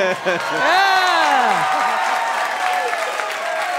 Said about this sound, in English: Why are you clapping for him? He is obviously an evil man.